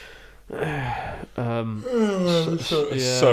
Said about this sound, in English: Sorry to yawn there